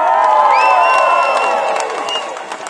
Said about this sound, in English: Unlike McKee, the only thing drowning Haruera out were cheers and applause.